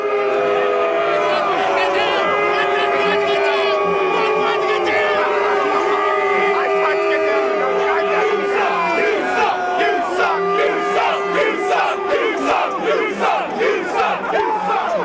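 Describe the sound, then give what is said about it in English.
A large stadium crowd roars continuously, a sustained mass of booing blended with cheers and shouts, loud and dense throughout with rising bursts of yelling toward the end, as NFL Commissioner Goodell walks down to the crowd shaking hands on the front row. “There were some cheers, a whole lot of, you know, angst and boos, but it was...”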